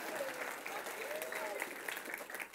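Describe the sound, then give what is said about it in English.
An audience applauds steadily for a few seconds, a dense patter of many hands clapping at once, with faint voices and a brief whistle-like tone mixed into the crowd noise. “Yeah, we can applaud”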